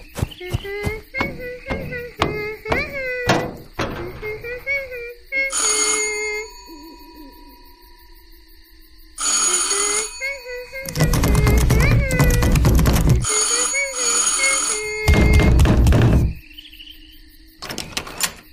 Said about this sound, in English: Head on up there and ring the doorbell.